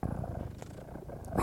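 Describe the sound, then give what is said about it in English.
A person imitates a big cat's purr as a call for black panthers, a low, rumbling, rhythmic throat sound swelling into a louder, rougher burst at the very end. “This is how I call in the Black Panthers.”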